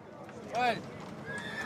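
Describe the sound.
A horse lets out a short, loud whinny, rising and falling in pitch, with a busy outdoor backdrop of murmuring voices and other horse sounds at a fair where there are horses everywhere.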